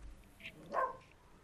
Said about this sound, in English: I wish the dog would shut his yap up there.